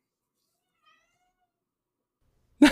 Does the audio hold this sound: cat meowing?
yes